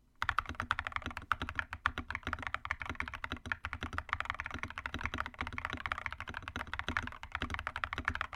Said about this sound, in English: like a little bit of keyboard ASMR for y'all. ASMR for y'all. Like, you will be able to hear how good this keyboard sounds.